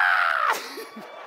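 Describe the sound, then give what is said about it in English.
A voice imitates a woman panicking in three feet of water in a pool: one loud, shrill, drawn-out cry that slides downward in pitch, then breaks into a few quieter, ragged vocal sounds. “She's just screaming, ah, ah,”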